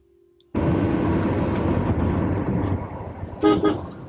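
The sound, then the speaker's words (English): After a brief low hum, a loud, steady roar of a car speeding along a highway toward the Boston waterfront rushes in, and a short horn blast sounds near the end. “Ten minutes later, we're back in the car, speeding down the highway, heading towards the Boston waterfront.”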